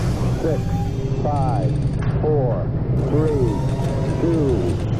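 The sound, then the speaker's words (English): A steady low mechanical rumble runs throughout while a voice calls out short words about once per second, a rocket launch countdown heard over radio: ignition sequence start, counting down to zero, all engines running and liftoff. “Ignition sequence start.”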